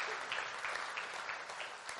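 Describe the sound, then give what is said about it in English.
An audience claps steadily, many hands blending into a dense, hissy wash of applause at an even moderate level throughout, with no talking over it. “You should clap for this.”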